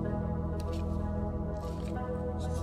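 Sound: sipping hot coffee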